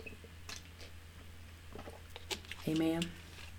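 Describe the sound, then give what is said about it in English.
Someone takes a few quiet sips of water, with soft wet clicks and slurps, then makes a short voiced sound near the end. No words are spoken. “I'm gonna take a little sip of water.”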